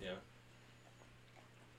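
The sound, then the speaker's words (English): A German Shepherd dog named Bullet lets out one brief, high whimper right at the start, followed by near-silence with only a steady low electrical hum. “Yeah, and he's apparently wanting to speak, but he does not speak English, so we can't actually allow dogs on the podcast.”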